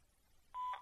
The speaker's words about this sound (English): At the tone, please record your message. When you've finished recording, you may hang up or press 1 for more options.